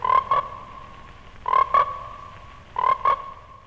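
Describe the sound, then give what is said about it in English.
Frogs croak in three evenly spaced double calls, each a pair of loud, buzzy croaks, over a steady background of quieter pond chorus, in a trailer for the American International film Frogs. “Frogs, today the pond, tomorrow the world.”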